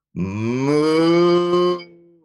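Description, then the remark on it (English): A person imitates a cowbird call through cupped hands, blowing a single long, loud, steady hooting tone that rises slightly in pitch before fading out, sounding much like a cow's moo. “so I just wanted to just give a little cowbird call. So hold on, I just got to get my hands ready here.”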